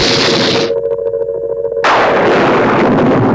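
A sudden, loud thunderclap bursts in partway through, a sharp crack that spreads into a sustained broad rumble. Before it come a hissing wash of noise and a steady humming tone. No one speaks.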